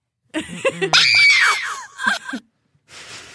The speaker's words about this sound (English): Moaning. Moan, scream. Scream, moan. Why was there a moan? Scream, moan.